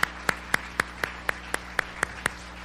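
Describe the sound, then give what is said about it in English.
Hand clapping for Jesus in a steady, even rhythm, about ten sharp claps in quick succession as if a group claps together in time, moderately loud, with no voices. “Come on, give Jesus a big hand clap today.”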